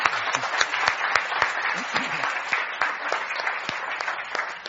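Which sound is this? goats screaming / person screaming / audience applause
audience applause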